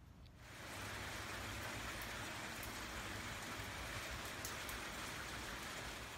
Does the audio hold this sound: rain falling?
yes